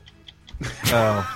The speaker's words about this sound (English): I'm not sure if it's the right theme song. The clock is ticking.